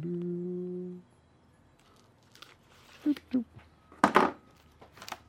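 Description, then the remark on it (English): Plastic shrink-wrap being torn off a vinyl record box set: a steady low hum fades, then a few short, crackly crinkles and one louder rustling burst follow in quick succession. “I mean, you can see the plastic is still on it. I haven't even opened it yet, but this one is still much better sleeve than this one.”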